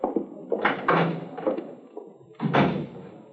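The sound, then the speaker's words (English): A side door is opened and then shut, with a cluster of clattering knocks from the latch early on and a firmer thud as it closes a moment later. “Use the side door, will you?”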